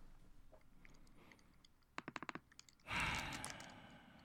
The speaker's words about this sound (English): do you mind typing that in?